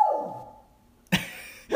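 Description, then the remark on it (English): A dog lets out a drawn-out whine that slides downward in pitch, then after a short silence gives two sharp, loud barks. “I think that's an amen in dog speak.”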